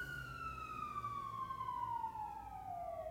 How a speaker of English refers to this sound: Don't they know we're recording? Hold for sirens. Hold for sirens.